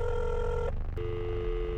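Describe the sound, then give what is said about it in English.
A phone line ringing through a handset on a call to a man whose phone appears switched off: steady electronic tones with a brief gap where the pitch drops, then ringing again, with no one picking up and no voices. “Just on a whim, I'm going to try and call him again.”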